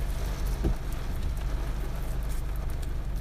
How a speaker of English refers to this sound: I hope you can't hear the rain. It's really disturbing.